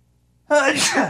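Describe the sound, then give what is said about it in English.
A single loud sneeze bursts out abruptly after half a second of near silence, a forceful, breathy blast that stays strong to the end. “I have to sneeze.”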